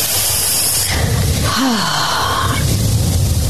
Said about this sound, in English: A lot of heavy breathing. You notice that? I wonder why.